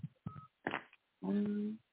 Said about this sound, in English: That's our answering service calling me right now.